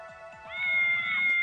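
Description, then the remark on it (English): A single drawn-out domestic cat meow that rises in pitch and holds for about a second, clear, with no talking around it. “We'll just both look at my cat.”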